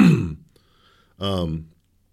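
A person coughs, which they attribute to a vaccine shot: a short, harsh burst, a brief pause, then a second, more voiced and strained cough, with no talking.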